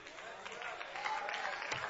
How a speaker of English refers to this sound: Heard 5 amens and a couple of hand claps.